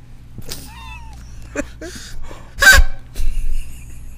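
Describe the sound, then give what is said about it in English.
Several short, honking duck-like whistle notes blown through cupped hands, interspersed with breathy bursts of air, fairly loud, with no talking. “This reminds me of in high school when the boys used to be able to do this thing. Fear. the duck whistle, and mine has been air the whole time.”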